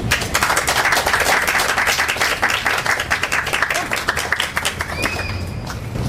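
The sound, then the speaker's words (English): An audience at the Poets at Art Fest 5 poetry festival breaks into sustained applause after a poetry reading. Many hands clap in a dense, steady patter that holds for several seconds before thinning slightly toward the end. “Let's give her a hand.”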